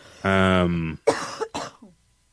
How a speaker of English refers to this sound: Coughing in the middle of my segment again. Sorry. It's very rude.